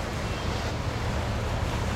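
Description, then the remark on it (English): A large boat passes on a river, its engine a steady low rumble mixed with broad, rushing wash and wind noise, loud and continuous with no voices. “Wow, that's a big sound. The Pride of London boat is passing us.”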